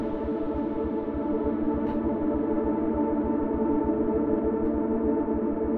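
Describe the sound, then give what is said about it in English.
A dense, sustained synthesizer drone of blips processed through an effects rack into a massive reverb being turned up, with steady pulsing low notes repeating rhythmically beneath a shimmering, smeared tonal wall; loud and continuous with no talking. “And then all that goes into a massive, massive reverb, which looks like it's barely even turned on right now. Let's turn it up.”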